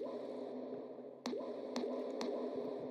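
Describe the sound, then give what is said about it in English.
Someone imitates drinking water with their mouth: a steady wet, squelchy gurgle punctuated by four sharp, juicy clicks at irregular intervals, with no talking. “Anyways, this is my noise for when I'm drinking water.”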